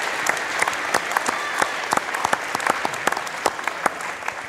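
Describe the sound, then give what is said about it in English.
Sustained audience applause for three inductees at a Hall of Fame induction ceremony, a dense wash of many hands clapping at steady volume, with sharper individual claps popping out of the crowd. “And if we could give one more final applause for our 3 inductees here at this first part of our ceremony here tonight.”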